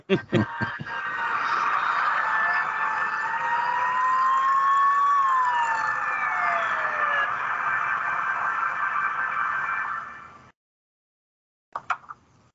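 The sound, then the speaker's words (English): A police car siren wails with rising and falling tones over a dense rumble of vehicle noise for about ten seconds as the police car pulls a car over in a traffic stop, then cuts off abruptly, followed by a few brief knocks. “He's really pulling him over like this is a serious traffic stop.”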